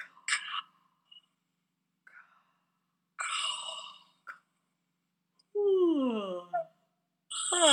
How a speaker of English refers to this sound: And we're going to breathe in and out on that K-A-H until we yawn with sound. And even if you don't yawn, it's okay. Just go ahead and feel that space in the back of your throat on the K-A-H.